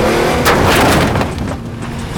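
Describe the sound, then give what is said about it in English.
Loud roar of car engines racing at speed along narrow roads with many other cars, with a broad whooshing pass and a sustained revving drone, as vehicles tear along in a chase. “They're turning left! Hold on! Get alongside them! These roads are too narrow!”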